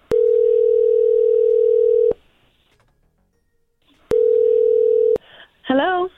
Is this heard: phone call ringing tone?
yes